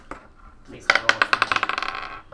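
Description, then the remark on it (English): Dice clatter onto a hard tabletop, rolled to hit and then for damage in a game. A loud hit comes first, then a quick series of bright, clicking bounces that speed up and fade as they settle. “Roll to hit, and then roll for damage!”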